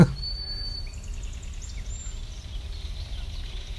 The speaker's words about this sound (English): Oh, and there's a kingfisher. That chattering is a kingfisher coming by. Yeah, looking for some fish to plunge down and grab.